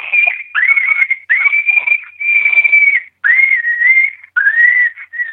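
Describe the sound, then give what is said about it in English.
A Shockwave remote electronic game call plays fox pup screams: about six loud, high, drawn-out squealing cries in quick succession, each sliding up then holding a steady whistle-like tone, with no voices. “And then I go to pup screams, which is this sound right here.”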